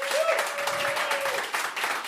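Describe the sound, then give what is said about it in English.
An audience votes by applause for Kit Kat in a chocolate bar poll. The applause is steady, a dense wash of many hands clapping at a fairly loud level, with a faint thin whistle-like tone gliding through the first half. “Voting by applause, and you can only applause for one of the bars.”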